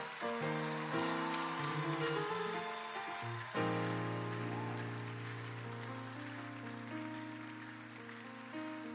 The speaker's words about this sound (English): Come on, jam your hands together for Jesus. You guys are clapping like you're clapping for me.